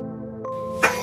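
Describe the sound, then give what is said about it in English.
A small boy sneezes once: a brief catch of breath, then a sharp, breathy burst over a steady low background hum. “Bless you.”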